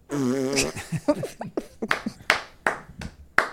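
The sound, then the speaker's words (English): A loud, buzzy fart noise with a wavering pitch lasts under a second, followed by a run of sharp, irregular slaps or claps. “Oh, the fart humor is flying here tonight, ladies and gentlemen.”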